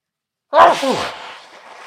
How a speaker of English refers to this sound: This is the first time I ever sneezed on this show. Holy shit! We're gonna keep that in there for educational purposes.